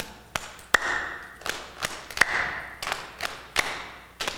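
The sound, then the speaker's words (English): A group in a crowd keeps a steady beat of two slaps and one clap, repeating at an even tempo with a few louder, ringing claps standing out. No one speaks. “You're gonna keep a beat. Two slaps, one clap.”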